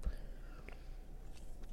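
A few soft sips from a can of Monster Max energy drink, with faint mouth and swallowing noises over a low background hum and no talking.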